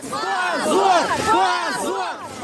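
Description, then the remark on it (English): A crowd in the snow in Moscow, gathered to lay flowers, shouts "Shame on you" at police in unison, voices rising and falling in a repeated chant-like rhythm, loud, with many overlapping voices blending into a sustained angry roar. “Those spared shouted, "Shame on you," but the police cleared the area.”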